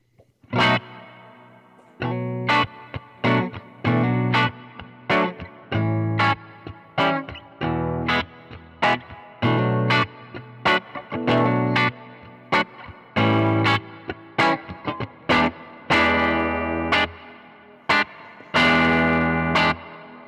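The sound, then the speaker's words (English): An electric guitar played through a delay and reverb pedal, its mix dialed down to about nine o'clock, plays choppy, rhythmic chords soaked in effects, each strum trailing a soft delay and a subtle wash of reverb, loud with no talking over it. “That seems like it gives it that background reverb thing without being so overwhelming.”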